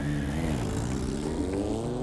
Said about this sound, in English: Whoever it was, they fled the scene on the back of a motorbike driven by an accomplice.